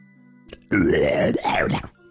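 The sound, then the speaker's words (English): Someone loudly imitates their own snoring with their voice, a rasping, grunting rumble in two drawn-out pulses lasting about a second, with quiet before and after. “That's how I snore.”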